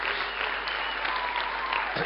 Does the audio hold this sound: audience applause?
yes